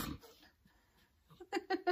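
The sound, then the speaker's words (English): A dog shuffles about, kicking a person, then lets out three short, whiny yelps in quick succession, fairly loud, with no talking. “And there goes the dog kicking me.”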